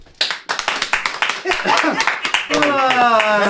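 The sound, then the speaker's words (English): A brief, thin round of applause: a few hands clapping in a quick, uneven patter for about two seconds before a voice starts talking over the tail end. “All right, so, round of applause”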